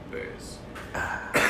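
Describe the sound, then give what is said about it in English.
A couple of rough coughs and throat-clearing bursts, fairly loud, the second harsher than the first, over a low murmur of background noise. “Try not to cough too loud.”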